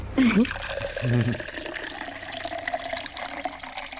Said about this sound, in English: When you hear the sound of the pouring water into the pint glass, that's where you need to hold your nerve